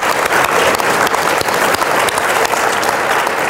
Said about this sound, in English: so let's give them all a big Absolutely. Round of applause. Absolutely. Thank you.